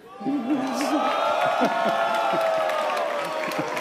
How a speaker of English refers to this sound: I could pick out like the four guys in the crowd cheering for it.